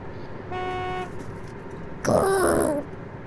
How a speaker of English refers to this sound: Dude, what is up with this traffic? Oh my God, look at all this traffic. Look at all this traffic. Oh my God. This is ridiculous.